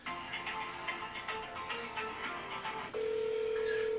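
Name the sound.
telephone keypad tones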